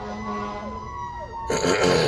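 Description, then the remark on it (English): Fire engine sirens wail with rising and falling tones as the trucks pass by in Quakertown, followed by a louder surge of rumbling engine noise. “Do not be alarmed. We have some fire engines going through.”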